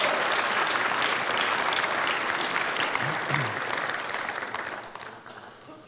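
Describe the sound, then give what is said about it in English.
An audience gives a round of applause as thanks, clapping steadily in a dense, sustained wash that holds strong, then gradually thins and fades toward the end. No one speaks over it. “Can we give her a round of applause and say thank you?”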